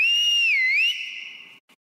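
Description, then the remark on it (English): A woman gives a loud whistle as a call to summon her family, one long shrill note that dips briefly in pitch, then holds steady before ending with a tiny extra chirp. “That's her whistle. We recognize it anywhere and we come running.”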